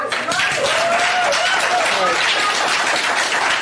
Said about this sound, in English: Ladies and gentlemen, it's one thing to clap and everything, and I've asked, you know, before not to. I could see that you weren't going to listen to me, so I did.